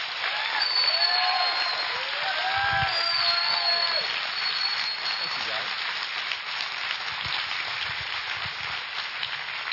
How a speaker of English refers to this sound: You automatically clapped. Why'd you clap? Because in our culture, it means approval. It means thank you. It means you've done a job well.